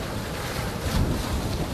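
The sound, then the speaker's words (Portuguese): Rough sea water churns and surges steadily, with gusty wind rumbling across the microphone and a heavier swell rising briefly midway. No voices. “Os mares se agitam e, de tridentes na mão, os deuses respondem ao chamado de Nyangumi.”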